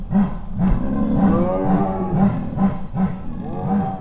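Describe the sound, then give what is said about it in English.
A chorus of big cats chuffing and moaning together at night, recorded with microphones set up outside. Overlapping low, rhythmic breathy pulses sit under long rising and falling harmonic calls, echoing, steady and fairly loud throughout, with no talking. “It's a kind of a chuffing chorus that they do, and they won't do it around people.”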